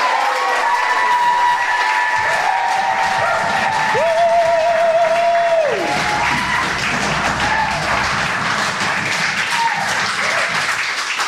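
An audience breaks into loud, sustained applause, dense clapping filling the whole stretch, with a few high whistles and cheers rising above it partway through.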